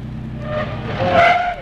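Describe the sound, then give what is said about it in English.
A big car's engine roars, then tires screech in a rising, high-pitched squeal as it skids hard to a sudden stop, with no voices over it. “Yeah, what the devil do you think you're doing with that car?”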